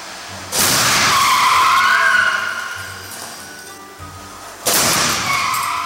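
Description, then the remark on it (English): A loud impact bursts in, followed by a long screeching skid that slowly fades, then a second sharp crash near the end, from crash test footage of a Volvo XC40 with crunching metal and sliding tires. “Would you like to sit in this type of car to go through this?”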